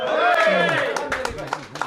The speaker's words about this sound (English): So, well, you taught a lot of these people around here that's giving you a round of applause now.